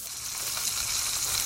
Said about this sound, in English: That's a good sizzle sound. Yes. Spam. Don't knock it till you've fried it. Sizzle. Pork and mmm. That's what they're trying to rebrand Spam as. Sizzle, pork, and mmm. As you noticed, the sizzle is a huge part of the campaign.